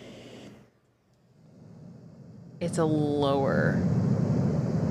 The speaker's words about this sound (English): Yes, okay, but this, can you hear the difference, is brown noise.